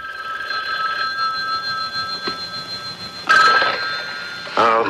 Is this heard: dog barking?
no